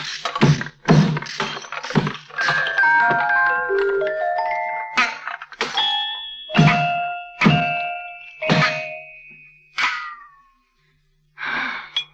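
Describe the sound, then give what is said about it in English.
A hammer strikes metal about a dozen times in an irregular rhythm, each loud blow leaving a brief ringing tone whose pitch shifts from hit to hit, with no talking. “Give me that hammer.”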